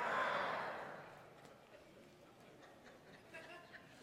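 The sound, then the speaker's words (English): An audience growls together in a rough, throaty rumble imitating a bulldog, loudest at the start and then fading into scattered murmurs and stray noises. “Come on, let me hear you growl one more time.”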